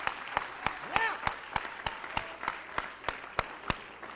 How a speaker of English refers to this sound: If you believe that God wants to resurrect, then give Him a good hand clap of praise and adoration.